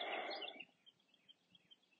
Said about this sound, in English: Got some ducks down the road too today. You can hear them. But they are a long way off.